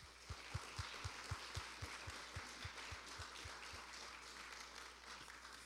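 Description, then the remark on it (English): An audience applauds the welcome team volunteers in a dense, steady wash of clapping, with a regular low thumping beat underneath for the first few seconds before the thumps fade out and the applause carries on. “Let's have a round of applause for our welcome team.”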